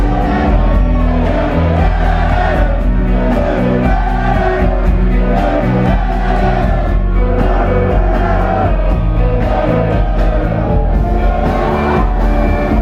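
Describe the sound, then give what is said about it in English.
A large concert crowd sings along to the guitar riff rather than the words, a repeating melody, loud and continuous, with wordless chanting over a steady backdrop of music and scattered whoops. “You know you've got a good riff if the whole crowd sings the riff and you've got a full room of people singing, not the words of the song so much, but the guitar riff.”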